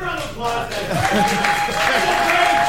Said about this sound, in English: Just give a round of applause, guys.